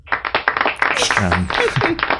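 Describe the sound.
Quick, steady hand claps ring out for under a second, then a voice speaks over the last of them, with several sharper claps continuing near the end.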